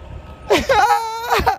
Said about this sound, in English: Y'all know this is a fucking garbage truck.